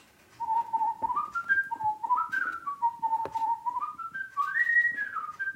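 A person whistles a lilting melody, clear and close, with notes sliding up and down in rising phrases. No one speaks; the whistling carries alone and steady for several seconds.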